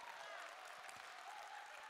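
In a church, one person starts clapping and a small group joins in, a faint, steady patter of applause that carries on evenly for a couple of seconds, with no voices over it.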